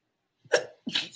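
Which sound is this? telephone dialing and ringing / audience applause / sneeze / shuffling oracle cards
sneeze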